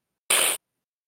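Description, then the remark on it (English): A single short, sharp hiss voiced by a person imitating an angry cat, loud, lasting about a third of a second with silence on either side. “You won't just hear me hiss.”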